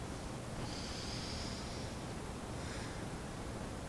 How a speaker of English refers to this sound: So let us return to our breathing again.